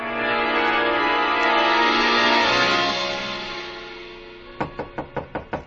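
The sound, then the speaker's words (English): A sustained droning tone fades out, then a rapid series of about six evenly spaced knocks by a bellhop on a hotel room door rings out, fairly loud, with no voices. “The knock surprised me. I'd forgotten about the bellhop. I got up to go to the door”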